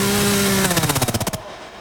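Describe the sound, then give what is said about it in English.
A chainsaw in a movie's sound mix drones steadily at very low volume, then breaks into a quick run of rapid, chugging pulses before cutting off abruptly, leaving a faint quiet hum. No one speaks. “See what they did there with the chainsaw being real low”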